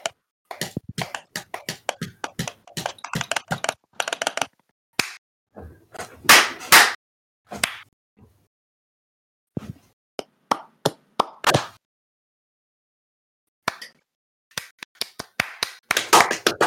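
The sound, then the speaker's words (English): A person claps really loudly with sharp hand claps in irregular bursts, some rapid and clustered, others spaced apart with short pauses of silence between them. “I'm just clapping really loudly and hoping my roommates are hearing this.”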